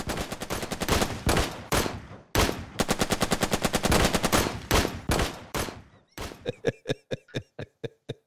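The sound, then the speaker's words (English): Long, rapid bursts of automatic rifle fire crackle loudly for several seconds, then give way to a slower run of separate single shots, each sharp crack ringing out with a short echo. “It'd be a combination of those two. There was an automatic rifle in there.”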